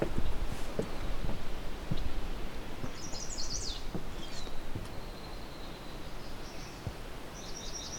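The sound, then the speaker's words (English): A swamp sparrow sings a few bursts of rapid, evenly repeated trilled notes in a wet shrubby thicket in a wetland around a wooden observation tower, over a steady rushing background of wind or ambient noise; no one speaks. “Go, we have a swamp sparrow.”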